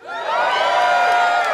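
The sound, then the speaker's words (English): A comedy show audience of dog owners cheers and whoops loudly for a second and a half, many overlapping voices forming a dense, sustained roar with high shouts rising above it. “You know your dogs can't hear you cheering for them right now, right?”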